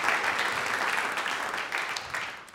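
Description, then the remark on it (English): An audience claps for six speakers in a sustained round of applause, a dense, steady crackle of many hands that stays fairly loud throughout, with a few sharper claps standing out near the end. “Please give a big round of applause again”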